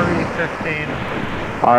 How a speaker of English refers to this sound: RE15 pointed at the ocean.